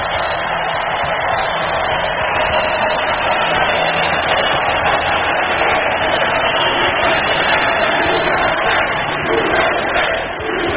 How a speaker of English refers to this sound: It was an enthusiastic crowd.